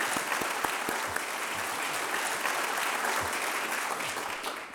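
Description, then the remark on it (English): Sustained audience applause for the two coordinators of a collaboration: dense, crackling hand claps at an even level, tapering slightly near the end, with no voices over it. “So I think we should give the two coordinators a round of applause.”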